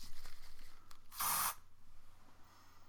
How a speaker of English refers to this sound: It's a spray, so I'm going to spray some and then I'm going to describe it for the listeners.